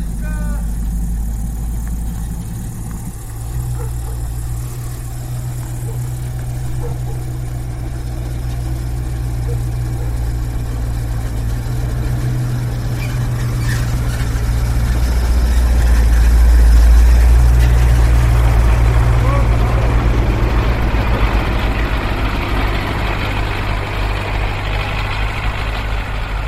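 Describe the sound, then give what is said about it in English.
A truck engine idles with a steady, deep rumble and low droning hum for the whole stretch, swelling somewhat louder past the midpoint before easing back slightly. The truck is going around the allotments selling peat and manure fertilizer. “With a truck going around the dashes and allotments, selling peat and manure fertilizer.”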